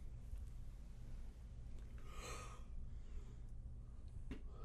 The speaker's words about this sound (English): Yeah, no, that's kind of going around the yawning.